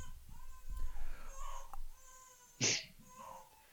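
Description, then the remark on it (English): A baby screams and wails faintly in the background, thin high-pitched cries rising and falling, broken by one sudden loud, harsh shriek before fading back to quieter whimpering. “Hear, like a baby screaming in the background or something?”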